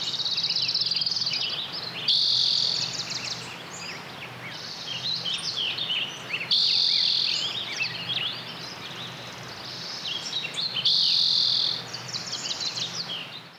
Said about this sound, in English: I captured everything to 2004, which was very healthy, and it had wonderful density and diversity of bird life. So 2004 is the first example that I'm going to show, and it's only 15 seconds.